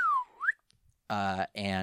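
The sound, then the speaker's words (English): A quick whistled tone slides down and then swoops back up, imitating the slide whistle sound effect that plays when the Dark Rabbit hops up in the show, followed by a short burst of voiced sound. “So the Dark Rabbit sort of hops up, and a slide whistle plays, which is my favorite sound effect in the whole show.”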